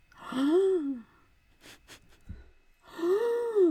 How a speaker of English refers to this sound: Gasp!